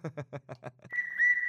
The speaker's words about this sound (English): That was good. You can give yourself a whistle, by the way. And by the way, we have to pay back some whistles.